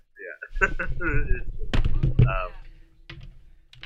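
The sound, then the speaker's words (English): A box of cereal gets knocked over by a chair, giving a couple of sharp, loud knocks and a brief rattling clatter in the middle while a man talks over it. “I knocked it over with my chair.”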